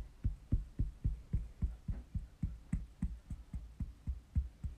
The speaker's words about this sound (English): I can't tell if these are footprints or someone banging on the wall.